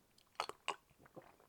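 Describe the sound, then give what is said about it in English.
Quiet mouth sounds of someone sipping barley water, a few short wet bursts and a soft swallow spread over a second, with no talking. “I'm gonna have a little sip of barley water now.”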